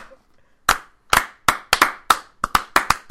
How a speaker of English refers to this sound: Slow clap.